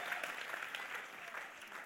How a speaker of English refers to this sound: Especially those who are clapping.